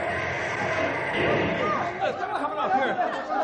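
Startled bus passengers clamor at once after a bus accident, overlapping shouts and exclamations rising into a dense commotion, with no single voice standing out.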